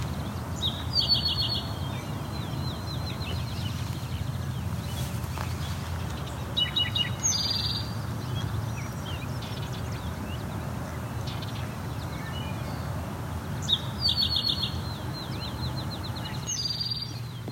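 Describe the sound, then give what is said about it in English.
A great crested flycatcher gives short, sharp rising calls, repeated several times in loose pairs, over steady low outdoor background noise with no voices. “That again is the call from the great crested flycatcher.”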